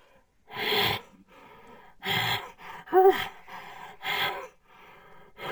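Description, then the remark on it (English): A frustrated bull panting in harsh, breathy bursts, roughly four loud exhales at uneven intervals with softer huffs between, one carrying a short voiced, grunting tone. No one talks. “When you start hearing those pants, it's like that frustrated sound that they get.”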